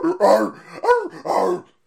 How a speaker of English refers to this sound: Hold on, sorry, I think a dog's being murdered outside. Hold on. The hell is that?